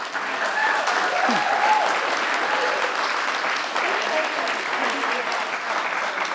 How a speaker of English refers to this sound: I mean, they're on the front rows here. Yes. We need to give them a clap.